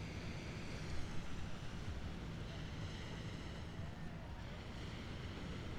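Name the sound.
ocean waves and wind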